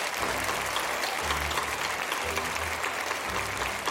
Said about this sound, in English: We are so very, very proud of you. And so please, let's give a round of applause to this wonderful group.